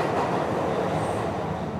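A tube train rolls along the rails with a steady, dense rumble and hiss that fills the whole clip, loud and unbroken, with no voices.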